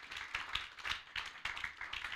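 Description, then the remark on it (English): A church audience claps their hands for the Lord in a steady, lively rhythm, the sharp overlapping hand claps forming a continuous bright patter with regular louder beats, and no voices stand out. “Can you clap your hands for the Lord?”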